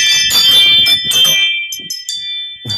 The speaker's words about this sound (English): maybe I should incorporate those chimes into my podcast full time, but that's just an app on my phone.